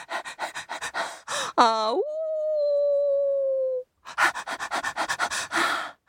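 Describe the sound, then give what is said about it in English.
A voice imitates a dog panting in quick, rhythmic breathy huffs, breaks into a long sustained whining howl, then resumes the steady panting. “He went along and he went along and he went along and he came across a brown dog lying by the road and panting.”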